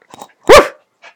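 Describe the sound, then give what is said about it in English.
A dog gives a single sharp, loud bark on the command "speak", with a couple of faint soft noises just before and after it and no talking. “Good, speak!”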